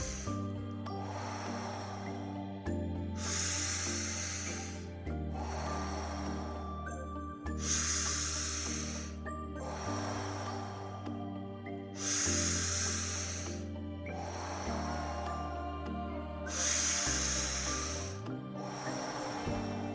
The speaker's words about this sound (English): Deep breath in, deep breath out, guiding yourself through this final round.